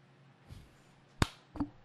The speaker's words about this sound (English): Clapping again.